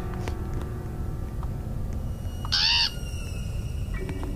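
A single harsh, raspy crow caw from a scary video game cuts in briefly over a low, rumbling ambient background, loud, lasting under half a second.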